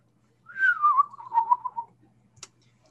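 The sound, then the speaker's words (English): A person whistles an imitation of a bird call, a single warbling call that slides downward and flutters for over a second, clear, followed by a brief sharp click. “Start to hear the birds make their calls.”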